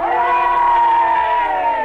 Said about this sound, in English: Men, give him a cheer. The lad's won his way across to the rescue. Let her ring out so he can hear it.